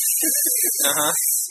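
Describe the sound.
A voice imitates a spray can used for spray painting graffiti tags, producing a steady hiss for over a second, broken by a few short voiced mouth bursts underneath.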